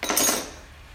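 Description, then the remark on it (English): Glasses clink together as they are cleaned out, a short, bright flurry of overlapping knocks during the first half-second, then the ringing fades into a soft, steady clatter. Nobody speaks. “We probably need to clean some glasses out real quick.”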